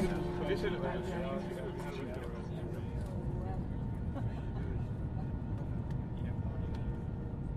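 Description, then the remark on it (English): Steady low rumble inside an airliner cabin at Istanbul Airport, doors closed, waiting before pushback on a flight to Dublin, with the constant hum of ventilation and indistinct murmuring voices in the first few seconds. “Okay, we're on the plane. They look like they've closed the doors. They haven't started pulling back yet.”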